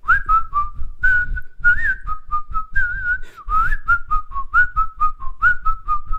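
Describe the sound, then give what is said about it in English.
A person whistles a short, lilting tune, the clear pitched notes rising and falling in a steady melody for several seconds with no talking. “My only whistle is...”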